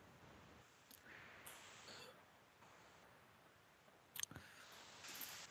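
Faint, scattered clicks of computer keyboard keys as people type at an irregular pace, with a quick burst of keystrokes near the end, set against a quiet background hiss and no talking.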